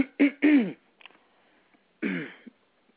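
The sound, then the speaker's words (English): A person clears their throat: two quick rough, gravelly bursts, then a short pause and one more harsh rumble. No speech. “I was just clearing my throat, actually.”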